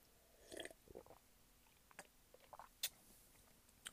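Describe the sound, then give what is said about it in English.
Someone takes a sip of a drink: soft slurping and wet mouth clicks, then a swallow and a few scattered smacks. “hold on, let me take a sip.”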